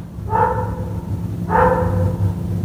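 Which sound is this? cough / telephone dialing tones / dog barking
dog barking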